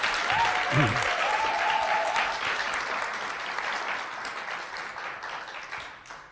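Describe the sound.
Sustained applause from a crowd, a dense, steady wash of many hands clapping that tapers slightly toward the end, with a brief voice or whoop rising out of it early on.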